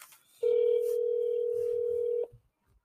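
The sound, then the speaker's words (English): A single steady telephone ringback tone on an outgoing call sounds for nearly two seconds, loud, then cuts off, followed by faint low rustling. “The phone is ringing.”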